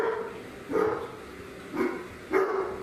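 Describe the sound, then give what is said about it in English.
A male pet dog barks in short, separate bursts, about three or four barks at uneven intervals, moderately loud, with no talking over them. “I don't know, he's barking. So just a random bark for my dog.”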